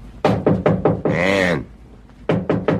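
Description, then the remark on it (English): A fist pounds heavily on the door of a room in two loud bursts, about five quick thuds, then a pause and three more. In the scene, Logan, played by Vincent Price, is pounding. A voice cries out briefly between them. “Logan, played by Vincent Price, opens the scene as he pounds on the door of your room.”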